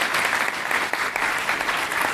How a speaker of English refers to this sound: All right, a round of applause